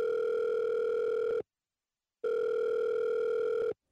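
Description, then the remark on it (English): A mobile phone ringing out on a call to the police: two long, steady electronic ringback tones with a short silence between them, clear with no voices. “Shakily, she reached for her mobile phone to call the police.”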